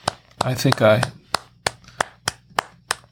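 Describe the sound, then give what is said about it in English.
One person claps their hands about ten times at a steady, even pace, crisp, with a short burst of voice near the start, giving viewers watching a livestream a round of applause. “And I think I want to give everyone a round of applause.”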